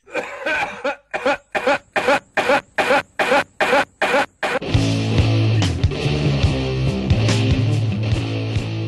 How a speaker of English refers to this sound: Yeah, it's like royalty-free cough sound. Like the Wilhelm scream.